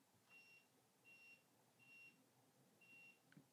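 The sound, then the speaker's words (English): Four short, high-pitched electronic beeps from an air conditioner's controls as it is turned on and set to a mode, evenly spaced about a half-second apart, followed by a faint click, with no one speaking. “I'll turn it on mode.”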